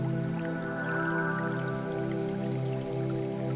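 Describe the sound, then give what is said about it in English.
Gentle creek water trickles steadily with light droplet-like splashes, continuous, over a low sustained tonal hum: a stream flowing into a forest. No one speaks. “The leaf is flowing away with the stream into the forest.”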